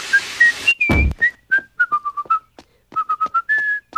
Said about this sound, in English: I've asked you not to whistle that annoying tune.